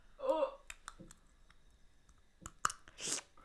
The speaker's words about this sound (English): Not the Invisalign slurp. That's traumatic.